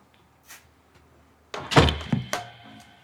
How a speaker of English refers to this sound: Oh, we should close the door.